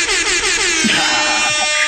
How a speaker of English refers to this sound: I'm dropping the air horn.